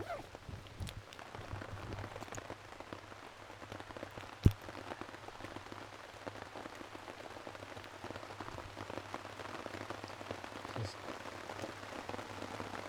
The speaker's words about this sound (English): fantastic sound of heavy rain on a tarp, knowing you're safe and dry underneath it. Don't get much better than that.